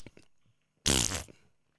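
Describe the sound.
A voice imitates a fart, blowing a loud, buzzy raspberry that lasts about half a second, preceded by a few soft vocal sounds and trailing off into a quieter murmur.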